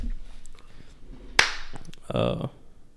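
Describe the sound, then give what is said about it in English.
A single sharp, loud hand clap rings out, followed moments later by a short burst of voice amid faint background murmur. “Do you want me to clap? Yeah, let's clap.”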